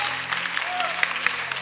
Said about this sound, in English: Don't clap hands because you feel like clapping hands. You clap because you are a Jesus lover.